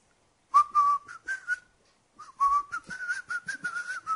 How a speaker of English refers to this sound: Meanwhile, let me go and wash your motor car. Wash his car while whistling.